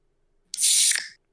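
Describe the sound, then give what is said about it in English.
A recording played from a phone of a soda can cracking open with a sharp snap followed by a bright, hissing fizz of escaping gas that lasts about half a second, then stops abruptly. No one speaks. “How did you reseal and open up? I have a recording on my phone just for that special occasion.”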